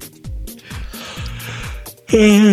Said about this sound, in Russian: Простите, зевнул.